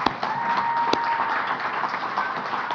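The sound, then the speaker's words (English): Steady applause from a crowd fills the whole stretch, a dense, even wash of many hands clapping at a constant moderate loudness, with a few sharper claps popping out. “I'm glad you're applauding, because it's a big deal that the presence of God is open to anybody, no matter how sinful you are.”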